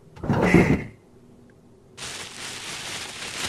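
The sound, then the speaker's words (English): A drawer slides open with a short, loud wooden scrape, followed after a brief pause by a steady, softer rustling as something inside is shuffled around. No one speaks. “Just check the drawer.”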